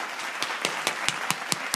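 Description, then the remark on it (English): Applause for President Trump as he leaves, in the form of steady, evenly spaced claps, about nine sharp hand claps in quick rhythm over a constant background hiss, with no one speaking. “Let's give him a round of applause one more time as he leaves here today.”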